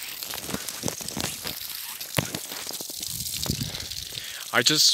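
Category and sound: household object, garden hose spraying water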